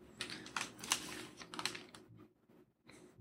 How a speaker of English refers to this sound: This is my spare keyboard that I use to try to type slightly more quietly during the show.